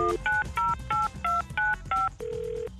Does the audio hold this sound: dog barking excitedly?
no